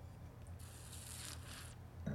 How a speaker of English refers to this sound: And so what I did just now also with that little slurpy thing also is not pretentious made up stuff. It's to aerate in the mouth so you get all the flavors.